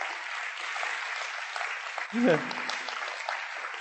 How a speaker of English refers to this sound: Amen? Give the Lord a clap there.